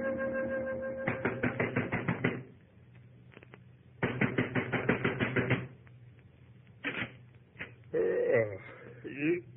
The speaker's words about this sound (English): you banging on the right door, mister?